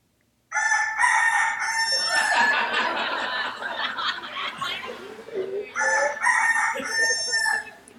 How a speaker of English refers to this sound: And all of a sudden, the rooster crows.